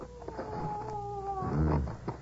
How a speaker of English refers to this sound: You tell that dog to shut up, will you?